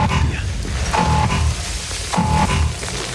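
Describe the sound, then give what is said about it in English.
An alarm in a film scene set inside a Chernobyl site sounds in two steady, mid-pitched tonal blasts, roughly a second apart, rising over a loud, dense rumbling soundtrack. “I really like the alarm in there.”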